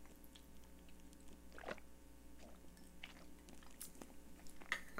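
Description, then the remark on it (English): Someone quietly sips a drink, with faint wet mouth clicks and soft swallowing sounds scattered over a few seconds against a low background hum. Nobody speaks. “Let me take a sip 1 second.”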